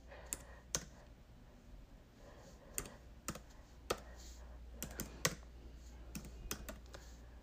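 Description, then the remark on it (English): Keys on a laptop keyboard click at a slow, uneven pace, one at a time with short pauses between, fairly quiet over a faint steady hum, as a person types with one hand while holding a phone in the other. “I know I'm typing a little slow, family, because I'm holding my phone one hand, and then I'm typing on my laptop with the other.”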